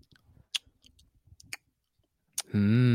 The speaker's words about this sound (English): The first part is like chewing or loud chewing or like gum smacking, kind of what you said earlier.